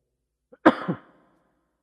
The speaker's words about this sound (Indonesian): Ini mau batuk lagi.